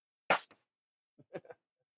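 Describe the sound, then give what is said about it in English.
A single sharp, loud slap sound effect with a quick smacking decay and a faint echo, followed after a pause by a few short vocal sounds. “We cue up the sound effect, Ryan. We need to slap him across the head.”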